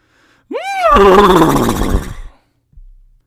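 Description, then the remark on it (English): A person imitates a horse's whinny: one loud call that leaps up in pitch, then wavers and trembles downward for about two seconds before cutting off, followed by a brief faint noise. “Actually, before I go on, I have to do my best horse impersonation.”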